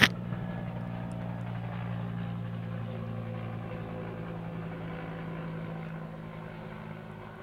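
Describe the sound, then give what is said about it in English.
A black helicopter's steady, droning engine roar with a low humming pitch, continuous and fairly loud throughout, fading only slightly toward the end. No one speaks. “Uh-oh, what's that black helicopter?”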